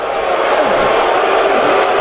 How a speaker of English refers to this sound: Rey Mysterio comes out, and he gets booed out of the building.